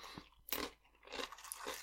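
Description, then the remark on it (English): Someone munches Fritos corn chips, with a sharp crunch followed by a longer stretch of crisp, crackling chewing, loud. No one speaks. “Yeah, even just a plain Frito is pretty good.”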